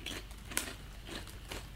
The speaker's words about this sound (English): All right, I'm going to mute myself while I'm eating the crisp. No! The best part is hearing your crunch, crunch, crunch. Oh, we'll go. Some ASMR content for you. Going to eat another one just to make sure.